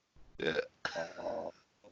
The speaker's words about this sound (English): It's when you burp directly into the microphone, i.e., the Geniac. Yeah. that you have to do a shot,